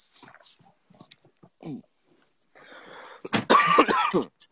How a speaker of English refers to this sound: Why are you coughing so much?